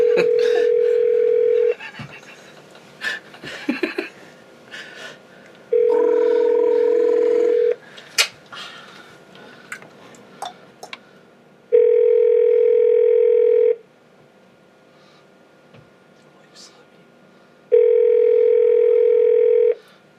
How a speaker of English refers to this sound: Answer the phone